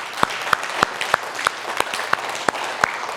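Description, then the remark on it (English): An audience claps steadily during a sermon, after a scripture reading: a dense wash of applause with a few sharp, evenly spaced claps standing out about three times a second. There is no talking. “If you don't know Jesus and you're wondering why everyone's clapping, like, okay, he didn't say anything that great.”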